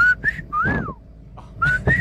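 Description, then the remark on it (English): A family's signature human whistle call, taught by the father to his children since childhood, loud: two short level notes, a long rising-then-falling slide, then a pause and two more short notes repeating the pattern. “El chiflido de mi familia que siempre nos enseñó mi dad desde chiquitos, it was this one.”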